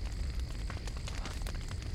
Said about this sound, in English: Part of the roof starts to cave in. Inside, timber is falling from above. The flames are spreading quickly.